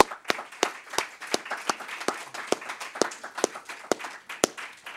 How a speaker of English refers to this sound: So please give them a round of applause.